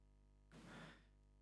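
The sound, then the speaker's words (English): A single sneeze: a sudden breathy burst that lasts about half a second and then quickly fades, with no talking around it. “God bless you.”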